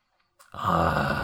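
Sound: voice imitating a growl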